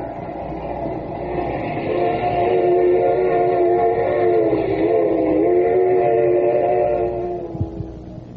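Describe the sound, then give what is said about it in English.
A train rolls steadily along the rails, heard by passengers sitting inside it: a continuous rumble with a droning, whining hum layered over it, holding for several seconds before easing off near the end. “Just as sure as we are sitting in this train, Judge Graham will die.”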